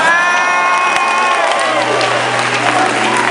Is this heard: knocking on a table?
no